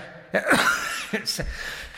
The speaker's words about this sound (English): I've been holding off that cough for about 2.5 minutes.